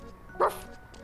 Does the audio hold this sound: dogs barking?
yes